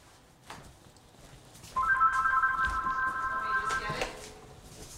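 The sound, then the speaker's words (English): A telephone rings with a steady electronic warble lasting about two seconds, moderately loud, with faint background movement and no talking; the call is from a telemarketer. “It's nothing. Yeah, telemarketers. When your number is online.”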